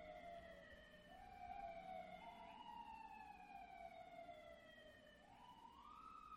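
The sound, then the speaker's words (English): Emergency vehicle sirens wail continuously, their pitch sliding slowly up and down with a couple of sharp rises, over a low traffic rumble, with no talking. “I'm going to wait till the sirens go away.”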